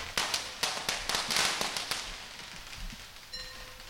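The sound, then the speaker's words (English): A rapid, irregular string of sharp cracks and pops from firecrackers and bangers, set off amid a crowd of thousands of people, loud at first and then thinning out. A faint high tone rings near the end. “People use fountain fireworks like flamethrowers, fanning the ground to make sure no bangers were missed.”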